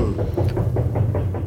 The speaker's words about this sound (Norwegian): Her jobbes det også litt tydeligvis, så vi hører litt banking ute I gangen her.